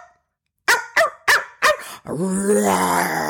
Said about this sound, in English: It was the voice of Sammy, my miniature poodle, and his high-pitched bark.